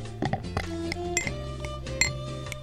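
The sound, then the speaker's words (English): Beer pours into a glass, producing ringing, glassy tones that shift in pitch as it fills, with a few sharp clinks along the way and no talking. “so now we get the audio of the pour.”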